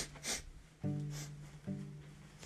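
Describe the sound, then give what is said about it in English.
A voice imitating a woman sniffing the air: two short, breathy sniffs, each followed by a low, drawn-out hum. The sniff-and-hum pattern repeats twice, fairly quiet, with no speech. “She's sniffing the air.”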